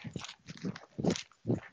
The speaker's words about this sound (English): I can hear you fucking walking, bro. Or running, or whatever. Sound like a horse. I'm speed walking right now. I got long legs. You're galloping, bro.